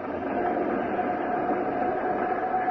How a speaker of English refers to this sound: I am ready to fire. Hold it. Okay. All set to fire. Clear? Clear. Starting starboard jet.